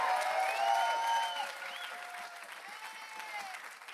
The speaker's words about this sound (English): Come on, if you believe it, come on, give him a good hand clap and a shout of praise.